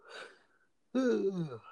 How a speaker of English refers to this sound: Excuse me. Oh my gosh. It's like my third yawn ever on air.